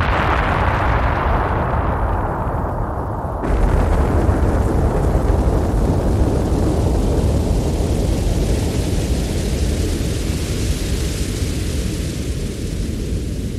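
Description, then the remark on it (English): A loud, deep explosion sound effect at the start of a song booms and rumbles, then a sudden wash of dense crackling hiss follows and continues steadily, like radioactive ash falling after the blast. No one speaks. “I love how you can hear not just the explosion, but the radioactive ash falling afterwards.”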